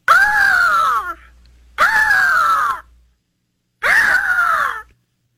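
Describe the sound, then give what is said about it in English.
A hawk screeches three times, each loud, harsh cry lasting about a second and sliding downward in pitch, separated by short silences, with no talking. “Okay, so I tried to find the equivalent of that majestic hawk sound. Here's the best we could do.”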